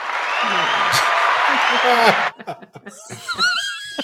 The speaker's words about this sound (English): What was that? Applause.